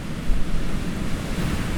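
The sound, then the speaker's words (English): Wind blows steadily, carrying a dense, gritty hiss over a low rumble that swells slightly in places, with no voices and no distinct individual impacts. “That said, maybe it was some large grains of sand that got caught up in the wind.”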